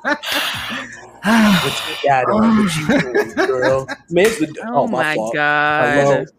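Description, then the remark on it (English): A voice imitates creepy people heavy-breathing and moaning in the background of a phone call: eerie drawn-out, wavering moans, fairly loud, with breathy gasps between the groans and a bit of chuckling mixed in. “And then you would have the creeps in there in the background just moaning. Just breathing.”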